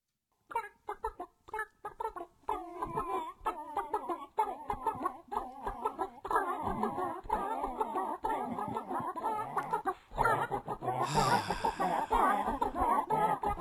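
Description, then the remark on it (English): Chickens cluck continuously, a busy overlapping chorus of short clucks and squawks, growing louder and more excited near the end with a harsher squawking burst. “The fucking clucking chickens.”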